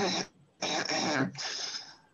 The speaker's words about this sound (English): But allow me to clear my throat before I ask this question.